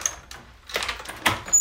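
A car door is opened, with a couple of sharp mechanical clicks and clunks from the handle and latch, followed by a brief rustle. No one speaks.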